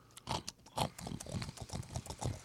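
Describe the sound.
A person imitates a pig, making a rapid run of snorting, grunting oinks, rhythmic and fairly loud for a couple of seconds.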